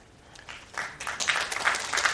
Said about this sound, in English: And your applause can be as robust as that or even more so, if you'd like.